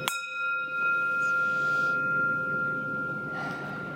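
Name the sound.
meditation bell being rung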